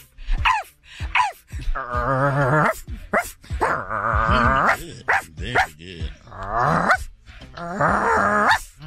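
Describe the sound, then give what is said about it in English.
A woman's voice imitates a dog, loud, with a run of short yaps followed by several longer, drawn-out growling barks and whines repeated over several seconds. “Now, watch her kill this one. Do a dog”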